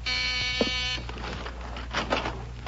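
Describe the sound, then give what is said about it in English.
A harsh, buzzing front door buzzer of a house sounds steadily for about a second, rich in overtones, then cuts off, leaving a low hum and some faint rustling noise. “That's the front door.”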